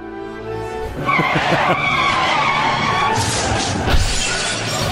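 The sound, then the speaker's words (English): Car tires skid and squeal loudly for several seconds, a harsh, sustained screech with engine noise beneath it and a brief crash-like burst near the end. “Is this actual audio of the amount of times a car or a a truck has run into the Talbot Street Bridge?”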